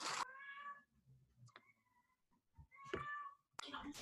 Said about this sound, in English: So you have your cat in the background, and my cat just muted us.